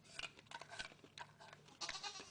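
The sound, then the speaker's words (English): A goat at a zoo bleats several times in quick, wavering calls, clear, with a brief pause before a louder final bleat. “You can hear a fucking. A goat?”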